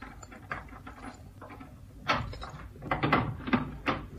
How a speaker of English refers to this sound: Listen, don't break down the door. Have you got your skeleton keys? You bet. Well, use them. Okay.